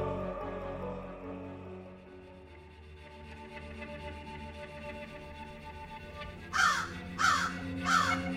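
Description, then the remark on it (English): Three harsh crow caws in quick succession, fairly loud, arriving at the end over a steady, sustained musical drone that fills the earlier part alone. “The crows would caw and peck at the corpses as carefully as a dowager entering her bath.”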